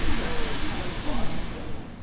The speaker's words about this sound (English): What you're listening to is my morning commute. Like thousands of others, maybe even you, my day generally starts on a crowded train platform, squeezing into a full train. It's not very fun.